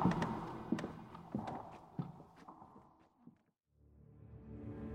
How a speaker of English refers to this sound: The wind died as the footsteps vanished slowly away, small motes of dust still swirling in the dim light.